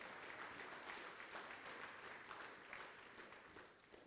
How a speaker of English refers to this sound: Can we give him a hand clap in this house this morning?